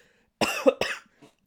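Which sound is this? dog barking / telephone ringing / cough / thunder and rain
cough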